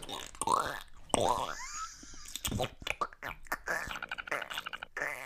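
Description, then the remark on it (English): A voice imitates a queef with a string of wet, sputtering mouth noises and pitch-bending whooping swoops, repeated in quick bursts for several seconds. “No, that ain't a queef. A queef is like.”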